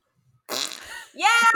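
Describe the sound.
A loud fart noise made with the mouth: a buzzy, sputtering raspberry followed by a second, higher, rising blast, likely a voice imitating the sound.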